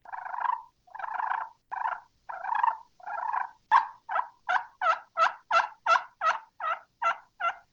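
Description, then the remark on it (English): A turkey hen call imitated on a game call: a run of raspy yelps, first a few longer drawn notes, then a quick, evenly spaced series of sharper clucking yelps, loud with no talking. “She's perfect. That call is insane.”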